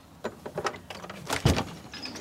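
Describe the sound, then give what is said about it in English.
A few quick knocks on the door of a hound breeder's home by arriving visitors, then a louder clunk and rattle as it is pulled open, with no voices. “We're going to hop in and say hello and go and meet the hounds, hoping she hears the door.”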